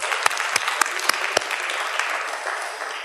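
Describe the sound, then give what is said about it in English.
A crowd at a church service applauds the booth crew, a dense wash of clapping with a few sharper individual claps standing out early on, then settling into an even, moderately loud patter. “So big round of applause to you guys.”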